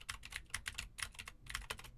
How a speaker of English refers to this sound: Now I am typing on a keyboard with Gateron Blue switches to see how much of my voice versus how much of the keyboard it picks up. And for the gaming folk, now I am clickety-clacking on the sad W and the spacebar keys.